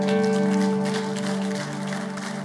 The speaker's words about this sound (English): Hey, let's clap for